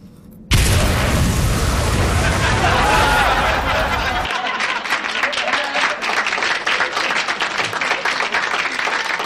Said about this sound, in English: You know what I hate? I hate when the good guy is walking away and then a huge explosion goes off behind him.